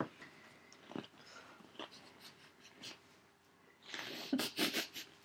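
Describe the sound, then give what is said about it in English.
Wet chewing of a crunchy Oreo cookie stuffed whole into a female's mouth, with irregular mouth clicks and soft crunches that grow louder and busier toward the end, with no talking. “All right, she's chewing. As she's chewing, some Oreo is falling out of her mouth.”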